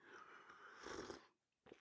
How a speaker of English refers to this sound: Now, I'm going to have to go ahead and take a sip of my preferred beverage. And if you're on our YouTube or on our video or on our Rumble, you can see that I'm using my Captain America coffee cup today.